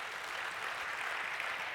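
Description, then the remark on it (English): A church audience clapping their hands for the Lord, a steady, dense wash of applause at full volume without pause. “Come on, give the Lord a hand clap.”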